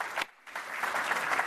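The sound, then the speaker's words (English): An audience at a talk gives a round of applause, briefly dipping then swelling into steady, dense clapping: a bright, noisy wash of many hands with no voices over it. “Maybe one more round of applause.”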